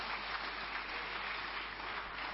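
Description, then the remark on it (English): An audience claps steadily, a dense wash of many hands sustained at an even level throughout, with no voices standing out above the applause. “That needs a clap.”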